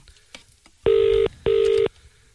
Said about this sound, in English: So he's dialing the number now. Yeah. Okay. Go on then. I press dial. Yeah. There we go. It's ringing.